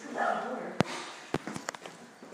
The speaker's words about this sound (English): I live in a haunted manor, haunted by barking ghost dogs.